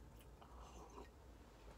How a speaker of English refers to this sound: So I hope that you enjoy it, and as always I'm going to take a sip of your beverage because you're not here.